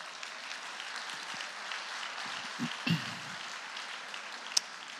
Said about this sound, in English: Can we give these people a round of applause?